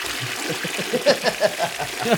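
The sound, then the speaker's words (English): A toilet flushing, with rushing water broken by a quick series of gurgling surges as the bowl drains into a septic tank. “I unfortunately have to flush In-N-Out.”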